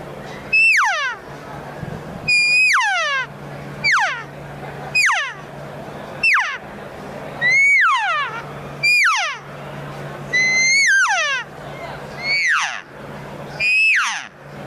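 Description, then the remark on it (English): A series of about a dozen high, whistling elk cow and calf calls, each sliding upward then dropping, blown through the 3-4 inch mouthpiece of a handheld game call at a steady, loud pace with a low hum beneath. “You'll hear an estrus buzz, then you'll hear a bugle, and then you're going to hear a lip ball bugle.”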